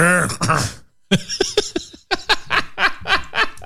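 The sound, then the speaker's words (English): A voice imitates a low, throaty grunt, then pauses and follows with a string of short, breathy cough-like bursts, fairly loud. “Back then, it was just called Yeah, it was a grunt. And then a cough.”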